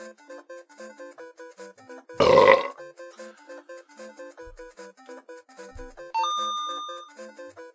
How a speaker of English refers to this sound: Ew. Your burp stunk.